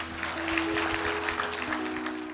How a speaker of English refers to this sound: Connection, let's give a big round of applause for God because he deserves all the glory.